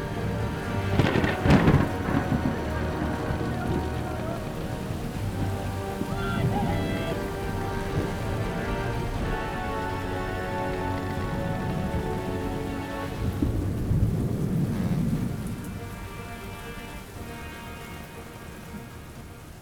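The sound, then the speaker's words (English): A thunderstorm with steady, heavy rain hissing throughout, broken by deep rolling thunder early on and again near the end, with no voices. “He brought us through the storm safely.”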